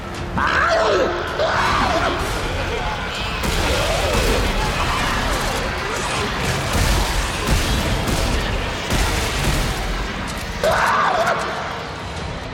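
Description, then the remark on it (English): Harsh, wet screams and gurgles from exploding monster enemies in a video game rise and fall over a dense, chaotic din of crashes and booms, with shrill shrieks bursting out near the start and again near the end. “The exploders, for instance, scream and gurgle in such a way that everything felt gross until they were dead and quiet.”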